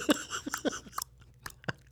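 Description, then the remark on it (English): A voice makes a series of sharp mouth clicks and tongue pops, fairly loud, imitating the tick-tock of a clock in a slightly uneven rhythm with no speech. “You gonna do your click clock thing?”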